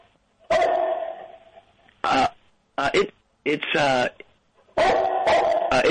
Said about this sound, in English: Your dog, I gotta say, your dog sounds a lot like my dog, barking.